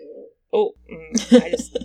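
A short, low burp after eating, followed by a quick throaty burst and then a few mumbled, speech-like sounds.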